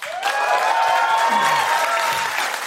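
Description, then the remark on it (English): A crowd claps steadily while several people let out long, rising woo cheers over the applause, loud throughout the short burst, responding to the answer "three dead iguanas". “That was an interesting one because three dead iguanas got less claps but more woos.”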